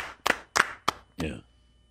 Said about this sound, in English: You know what? How about a round of applause off.